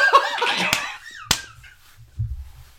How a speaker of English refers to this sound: Be loud. Do I have to wait for a second clap?